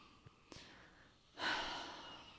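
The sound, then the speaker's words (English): A couple of faint clicks, then a long, breathy sniff as someone smells wine in a glass, inhaling steadily for about a second with no talking. “We're sniffing.”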